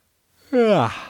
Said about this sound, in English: Yes, that's me yawning.